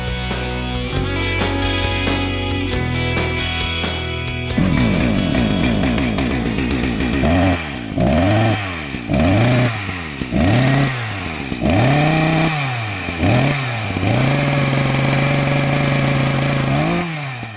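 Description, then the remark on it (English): A chainsaw engine sound effect revs up and down again and again in loud, rhythmic bursts, settling into a steady whine, after a short musical intro; it signals The Chainsaw segment on SENZ radio. “Past 11 here on SENZ, and that sound can only mean one thing. The Chainsaw is back on air.”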